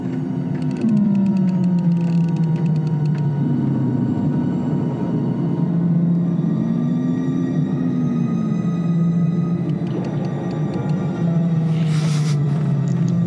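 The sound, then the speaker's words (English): The Death Star lever sound effect, a thick sci-fi bass drop: a deep drone with low tones that slowly slide and bend in pitch for over ten seconds, layered with faint buzzing and crackling higher up, no voices. “It's the Death Star lever. Which actually is almost identical to the tractor beam sound too.”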